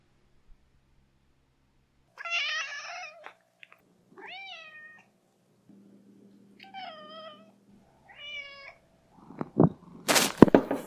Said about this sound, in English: This question is for Watson the Cat. Meow?